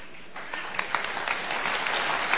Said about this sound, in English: You call that a smattering of applause.